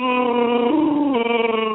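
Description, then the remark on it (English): A voice imitating a Chewbacca growl: one loud, sustained, buzzy vocal roar lasting almost two seconds, its pitch stepping up in the middle and dropping back near the end, with no speech. “Oh, I have to do a Chewbacca growl.”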